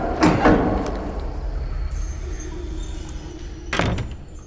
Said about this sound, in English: Come, my studio is right through this door. I really should oil these hinges.